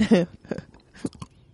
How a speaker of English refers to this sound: I'm crunching here.